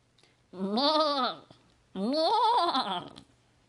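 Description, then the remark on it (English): Two loud, drawn-out goat bleats from the Inspiration Goat, each about a second long with a wavering, nasal tone, separated by a brief pause, with no talking. “So, you know, if you don't want that, then when I get done with Inspiration Goat's offering, you can head on out.”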